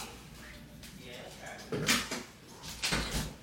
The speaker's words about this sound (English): I'm gonna shut this door.